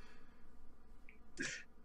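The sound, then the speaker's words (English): A single short throat clear, a quick rough burst of breath against quiet background hiss, with no talking around it. “All right, well, I think I need a room to provide I like clear my throat.”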